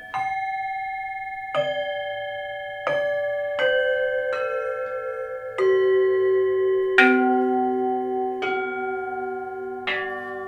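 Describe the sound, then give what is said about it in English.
Gourd tree bells, a gift from Emil Richards, struck one after another, about eight notes at uneven intervals, each ringing out with bright, sustained overtones that overlap into a shimmering wash. No voices. “These are the gourd tree.”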